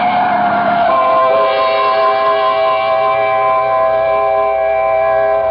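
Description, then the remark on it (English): A truck bears down on a street, a loud sustained blaring horn riding over a rumbling engine and road noise for several seconds, with no voices. “Look out for the truck”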